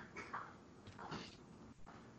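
Someone blows their nose hard in two breathy, honking bursts, each lasting a fraction of a second, over a low background hum with no talking.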